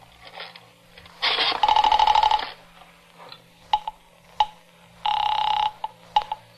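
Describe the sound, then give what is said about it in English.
A telephone handset clatters as it is lifted, followed by a buzzing tone and a series of sharp dialing clicks, fairly loud, with no voices, as someone dials the operator to reach the police. “I would call the police and tell them someone was threatening to kill me.”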